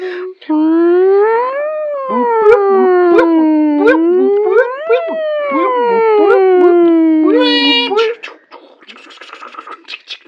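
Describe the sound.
A voice imitates an ambulance siren, wailing in long rising and falling sweeps for about eight seconds, loud, ending with a brief burst of breathy noise.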